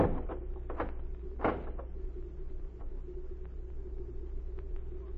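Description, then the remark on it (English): A heavy wooden barn door creaks and scrapes shut with a solid thud, followed by a few faint knocks, all over a steady low rumble. “Then get in the barn and keep quiet. You'll get in there with her. Hurry, I haven't time to talk. All right. Close the door.”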